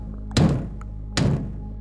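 Two heavy, deliberate knocks on a door that has just closed behind someone entering a room, spaced nearly a second apart, each a loud hollow thud that rings out briefly over a low steady background hum.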